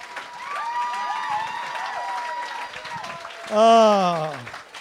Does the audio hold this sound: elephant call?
no